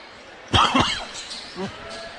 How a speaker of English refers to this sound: Again, apologies for the bit of coughing and sniffling here tonight. I'm just under the weather, folks. I have nothing. I have had that opinion backed by a medical professional. Unfortunately, I just have the crud, right?